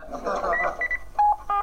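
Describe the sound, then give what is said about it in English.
A telephone being dialed: short electronic key tones beep in quick succession, following a stretch of murmured, speech-like sound. “Hang on, I'll phone him.”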